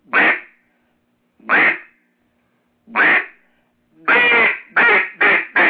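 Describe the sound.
A duck call blown loud as the lonesome duck or mating call: three drawn-out nasal quacks spaced about a second and a half apart, followed by a quicker run of four quacks. No one speaks.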